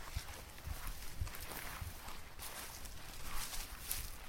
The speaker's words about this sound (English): We'll walk in a straight line for about 100 metres, quite slowly, and we'll look either side of us, about 10 metres either side, and we'll see what butterflies in the transect. Okay, well, let's walk about 10 metres or so through the grass.